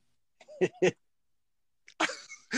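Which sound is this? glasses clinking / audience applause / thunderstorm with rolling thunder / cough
cough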